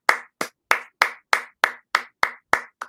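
A single person clapping steadily, about ten sharp, evenly spaced claps in a bright, crisp rhythm, with no voices.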